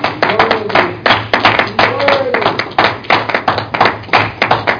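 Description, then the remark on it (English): An audience claps loudly and continuously as a hand clap of praise to the Lord before a sermon, a dense patter of many overlapping hand claps sustained for several seconds, with faint voices murmuring beneath the applause. “Can you give the Lord a good hand clap of praise?”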